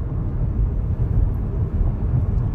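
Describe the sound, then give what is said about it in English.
A steady, loud, low roar of a car driving fast, at around 100, through heavy storm rain, continuous road and rain rumble filling the cabin with no voices. “In the storming rain.”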